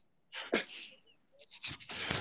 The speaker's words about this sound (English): That shows you how much technology we have going for the show, because we definitely have a sneeze button.